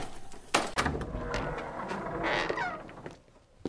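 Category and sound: household object, door opening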